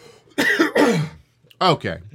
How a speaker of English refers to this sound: Hang on just a second. I got a cough here.